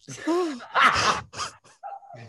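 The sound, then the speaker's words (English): A drawn-out yawn: a groaning voiced stretch sliding in pitch, then a loud breathy rush of air, trailing off into a few short murmured sounds. “I yawn so much on this show.”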